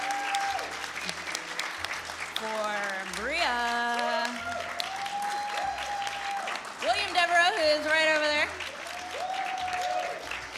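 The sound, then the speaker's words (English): A crowd claps steadily and loudly for about ten seconds for E.K. Johnston as the event ends, a dense patter of many hands, while a person speaks over the applause and a few voices rise above it. “But before we end, if we could please give a big, huge round of applause for E.K.”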